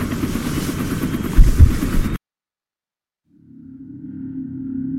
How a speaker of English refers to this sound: Follow me directly to the helicopter. Then when board, strap in.